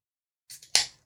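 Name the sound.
beer can being opened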